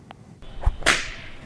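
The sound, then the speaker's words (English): A flogger whip strikes twice: a dull thump followed quickly by a sharp, bright crack that trails off in a hissing tail, with no voices over it. “Is that a flogger?”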